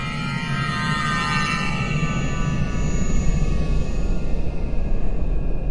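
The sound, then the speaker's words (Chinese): An alarm clock rings with a steady, high electronic tone that holds for several seconds without a break, over a low rumbling background that swells slightly toward the end. “我的闹钟在响，等一下。”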